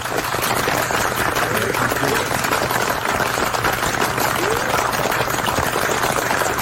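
A crowd applauds steadily for about seven seconds, many hands clapping in a dense, even wash with a faint low hum underneath.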